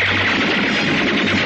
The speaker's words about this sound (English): Fire a volley through the window pane.